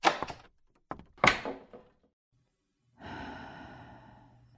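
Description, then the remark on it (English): A door swings shut with a couple of quick knocks and a solid thud, followed after a pause by a long, breathy exhale. “Please close the door on your way out.”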